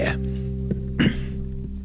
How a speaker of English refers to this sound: Biddy, biddy, and then a little cough. Apologize for little coughs. Particularly this time. It's not a time to be clearing your throat.